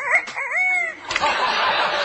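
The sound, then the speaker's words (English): A person imitates a rooster crowing, a short, warbling cock-a-doodle cry lasting about a second, followed immediately by a loud, noisy burst of laughter. “How about a rooster?”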